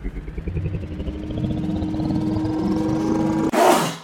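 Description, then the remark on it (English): A drawn-out, dramatic sneeze: a long, rising, strained vocal buildup for about three seconds, then a sudden loud, breathy burst at the end. Alone, with no talking. “Dramatic sneeze.”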